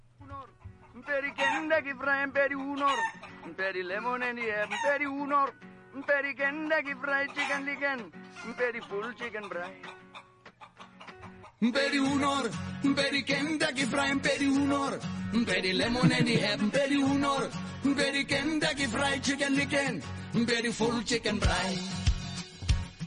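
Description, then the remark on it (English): An Afrikaans novelty pop song: chicken-like clucking and crowing vocals over a low drone, then a loud full band with a steady beat kicks in halfway, carrying on with sung vocals in a mock accent. “It's a big hit. Afrikaans loved it. I'll play a little bit of it.”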